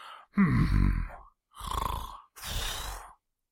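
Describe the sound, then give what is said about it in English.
A person imitates snoring with their voice: three fairly loud rasping bursts, the first a low groaning rumble and the next two breathier, with short pauses between them. “Were the snoring noises words?”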